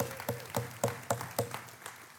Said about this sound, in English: Man, let's give God a hand clap this morning.